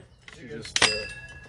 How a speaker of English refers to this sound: My bad. I shut the door.